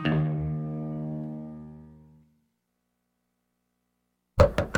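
A sustained musical chord rings out and fades to silence, then three sharp, close knocks on a door sound in quick succession near the end.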